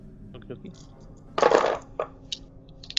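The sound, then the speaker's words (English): Ten six-sided dice, six for an attack and four stress dice, clatter loudly onto a hard surface in one burst, followed by a few scattered clicks as individual dice bounce and settle. “So I'm rolling 10d6.”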